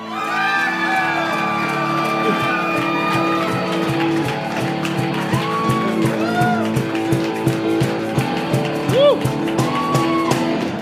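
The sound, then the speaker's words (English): A live audience at an event cheers loudly and steadily for about ten seconds after a host says he despises Hallmark Christmas movies, with many overlapping voices, rising whoops and shouts piercing the roar of the crowd. “You guys came out to an event to cheer on the despisal.”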